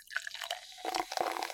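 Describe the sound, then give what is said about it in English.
Beer pours into a pint glass, a steady bubbly splashing with small drips and gurgles that grow fuller toward the end; no one speaks. “Finally, all that beer must get to the consumer, either poured into a pint glass at their local pub or taken home to drink.”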